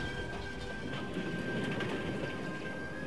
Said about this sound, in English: Ooh, looks like the train to Hogwarts.